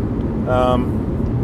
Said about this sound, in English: I'm in the car in the passenger seat. I have a chauffeur.